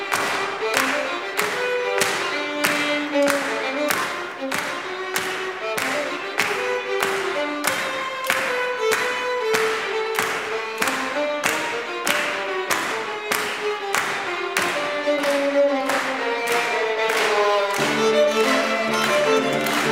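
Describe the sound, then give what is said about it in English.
An audience claps steadily in time, sharp even beats about twice a second, over a string quartet playing a lively melody from DBR's String Quartet Number 5, subtitled Rosa Parks, at a live performance, the rhythmic clapping loud and continuous throughout. “As you'll hear, the audience is getting so into it that they begin to clap, and it's just a really lively experience.”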